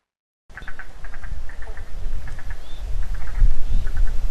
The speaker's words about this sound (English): So at the moment you can hear some frog species. So the Murray Valley froglet is that eek, that high-pitched sound that you can hear. So they're loving it at the moment. And the spotted marsh frog is that staccato lower sound that you can hear.